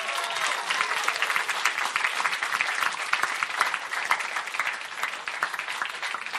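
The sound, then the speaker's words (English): A room full of people claps steadily and warmly as servers come in with hors d'oeuvres in the morning, dense overlapping applause sustained at an even level from start to finish, with no voices standing out. “Everybody give them a nice round of applause.”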